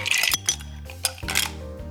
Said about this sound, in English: For two sloe gin fizzes, plunk enough ice cubes into a cocktail shaker to fill it.